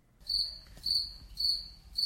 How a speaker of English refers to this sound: He finally went to sleep, but in the middle of the night, he heard the cricket again.